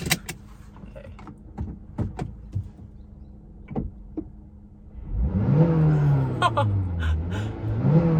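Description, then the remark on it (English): Several sharp clicks and knocks, then the engine of a car nicknamed the Shaggin' Wagon roars up loudly as it is revved to record its audio, its droning pitch climbing, dipping and rising again over the last few seconds. “I'm just gonna take audio of me like revving this car.”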